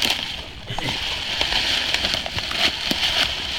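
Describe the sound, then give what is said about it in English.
Dry leaves crunch and rustle steadily as a deer is dragged across them, a dense, crackling scrape with irregular louder bursts and no voices. “A lot of leaf crunching.”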